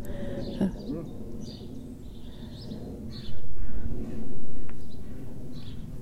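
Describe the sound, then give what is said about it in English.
A chicken, the one remaining of its flock, clucks and murmurs in short, scattered bursts over a steady outdoor rumble, with a couple of louder stretches partway through. “They're amazing birds, aren't they? They're tropical birds, apparently hens.”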